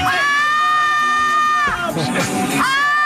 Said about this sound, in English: So she's standing like at the edge of like a bridge or a gorge or something like about to bungee jump? Yes. Do we have audio of her jumping? Yes. And now she's not bungeeing right now, but she's standing still screaming. She's still standing there.